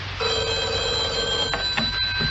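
A telephone rings with a single sustained, bright trilling burst that stops abruptly, followed by a couple of faint clicks and knocks against a steady hum.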